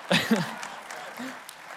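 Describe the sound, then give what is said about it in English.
A short burst of vocal sound at the start gives way to light, scattered audience applause, a soft crackling patter of claps that stays fairly faint and thins out within a second or two. “You can clap at that one.”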